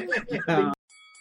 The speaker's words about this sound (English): Right, yeah, I'm ringing the bell. I'm throwing the flag at you.